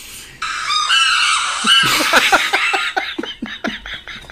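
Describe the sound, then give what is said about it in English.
Shrill, piercing chimpanzee screams ring out together, a sustained high wail that breaks into rapid, rhythmic hooting pulses as the calls build and overlap, loud throughout. “Screaming Chimps”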